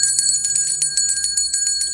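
A loud, rapidly trilling bell rings continuously for about two seconds, a bright metallic clatter like a game-show wrong-answer bell, rung to mark an answer as wrong, with no voices over it.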